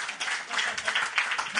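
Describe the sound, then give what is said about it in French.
A brief burst of live audience applause given in answer to a question, a dense patter of many hands clapping at a steady level, with a faint murmur of crowd voices mixed in. “Il y en a-tu qui, juste par curiosité, qui écoute le podcast pendant l'année, la saison régulière, par applaudissement?”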